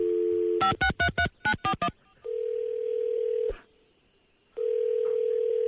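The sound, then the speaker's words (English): A prank call to the sheriff being dialed: a steady dial tone breaks into a quick run of seven touch-tone beeps as the number is dialed, then a single held tone sounds, cuts out with a click, and returns after a short silence. “Yeah, he calls the sheriff.”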